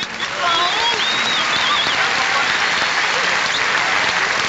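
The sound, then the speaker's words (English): A crowd in Champaign breaks into steady, loud applause for an event organizer, a dense wash of clapping that holds evenly throughout, with a few cheers and voices rising over it. “He deserves a round of applause, too.”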